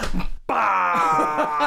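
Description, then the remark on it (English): A person imitates Godzilla's big yawn as Godzilla walks out of Mount Fuji: a long, loud, groaning monster yawn, a sustained throaty wail that rises after a brief pause and drags on in a deep, rumbling drawl. “We're just doing a big yawn as Godzilla walks out of Mount Fuji.”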